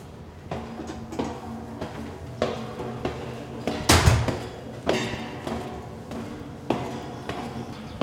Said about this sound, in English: There's a door at the base of the Carillon. Lindley unlocked it